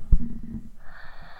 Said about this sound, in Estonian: Siin on kirjanik Epp Petrone ja minu kõrval nohiseb 6-aastane